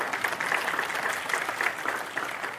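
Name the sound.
audience clapping hands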